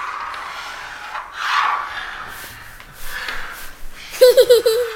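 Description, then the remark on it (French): A spoon scraped back and forth across a table to imitate ice skates, giving several breathy, rasping swishes of varying length, followed by a brief burst of laughter at the end. “Pour faire du patin à glace, on prend une cuillère et on la graisse sur la table dans tous les sens.”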